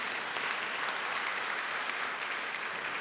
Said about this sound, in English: God already answered that Him possible prayer. Can we give a hand clap of praise for that?